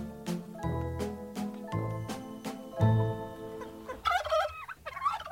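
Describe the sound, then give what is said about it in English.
A turkey gobbles loudly near the end, a rapid warbling burst after a few seconds of sustained musical notes punctuated by percussive hits. No one speaks. “So what about the alleged turkey?”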